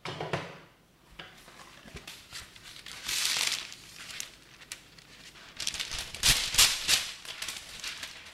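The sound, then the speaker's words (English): Baking paper crinkles and rustles in bursts as it is used to line a baking tin, with sharper crackling handling noises toward the end and no talking. “While that is going on, I will get some baking paper and line my baking tin.”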